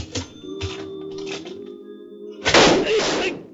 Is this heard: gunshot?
yes